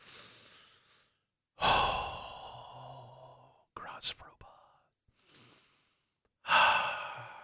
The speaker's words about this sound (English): Okay. Let's all do some deep cleansing breathing. Visualize hot black coffee flowing into your mouth.